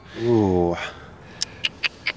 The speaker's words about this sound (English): Oh, look at that little... We got a little dog here. Oh, hey, pup.